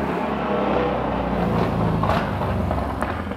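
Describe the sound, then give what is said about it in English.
A motorcycle engine rumbles past outside during a church sermon, a steady, moderately loud drone with a slight rise and fall in pitch as it goes by. No one speaks. “That's amen from a motorcycle driver.”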